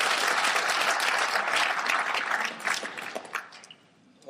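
A crowd applauds steadily to welcome speaker Jwa Seung-hee, chairman of the Gyeonggi Research Institute: many hands clapping in a dense, crackling wash that holds strong for a few seconds, then thins out and fades toward the end.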